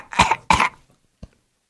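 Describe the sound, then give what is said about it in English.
Two harsh coughs in quick succession, followed after a short pause by a faint, brief third cough. No talking. “Start coughing on your teachers.”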